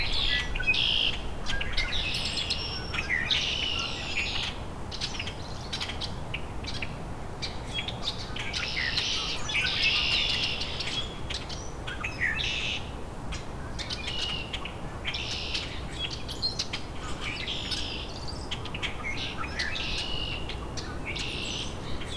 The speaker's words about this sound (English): There's a rusty blackbird.